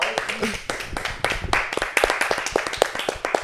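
A small group claps for a few seconds as a round of applause for hot apple cider, a dense, uneven patter of sharp hand claps that grows slightly louder toward the end, with a faint voice in the mix.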